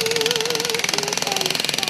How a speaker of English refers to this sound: At one point, they needed a jackhammer.